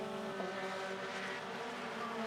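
Mazda MX-5 race cars in race 2 of the 2022 Mazda MX-5 Cup at VIR roar past, engines in a steady, high-revving drone, layered harmonics holding loud for a couple of seconds, with no voices over them.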